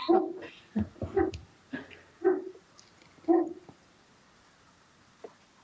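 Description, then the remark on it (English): Dogs bark in a handful of irregular bursts over the first few seconds, some with a whiny, whimpering edge. Then the barking stops, leaving near silence and one faint sound. “And my dogs.”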